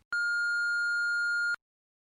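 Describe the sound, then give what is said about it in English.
A voicemail beep: a single steady electronic tone at a fixed pitch, starting abruptly and holding for about a second and a half before cutting off cleanly, prompting the caller to leave a message, with silence after. “Thanks for calling, and leave your message after the beep.”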